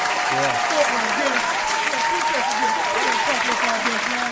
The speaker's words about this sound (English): That, man, I got to clap it up.